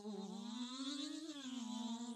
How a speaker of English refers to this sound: Oh, I can hear him buzzing.